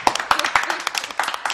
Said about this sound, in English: Clap it up.